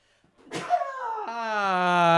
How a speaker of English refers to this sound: Bless you. I can't believe I got the words out before I sneezed.